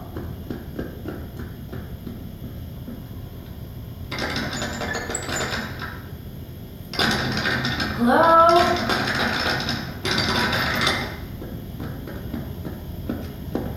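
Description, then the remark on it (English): A door bangs shut amid a burst of clattering thumps and a short squeaky creak, louder than the quiet, muffled background noise around it; no one speaks. “I don't know what just happened, but Oliver went outside and the door just slammed shut.”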